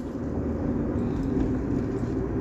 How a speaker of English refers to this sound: It's 7:52 in the traffic, in the drive time, guys. It's 7:52. And right now, we're on the way to work, and it's Monday.